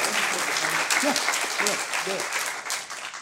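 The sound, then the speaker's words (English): An audience applauds steadily, a dense wash of many hands clapping at once for about three seconds, with a few faint voices mixed into the clatter, giving one more round of applause for everybody after the presentations. “All right, so let's have one more round of applause for everybody.”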